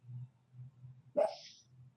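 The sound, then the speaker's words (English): A single short, muffled woof from one of the dogs barking in its sleep, rising briefly above a low steady hum and then fading out. “As I'm doing this, one of the dogs is sleep barking, like cheering on the conversation.”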